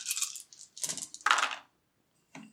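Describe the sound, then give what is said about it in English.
Dice clatter and tumble across a hard tabletop in a few quick, rattling bursts for a manipulation roll, then a brief final click after a pause. Fairly crisp, with no voices. “Make a manipulation roll”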